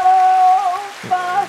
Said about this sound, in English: We give him an applause.